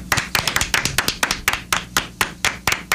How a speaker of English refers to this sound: I want to applaud that.